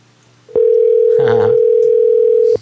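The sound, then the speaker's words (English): A loud, steady telephone dial tone hums continuously for about two seconds as a call is placed, then cuts off abruptly. A brief murmur of voice briefly surfaces beneath it partway through. “Hey, someone called us in the middle of that call.”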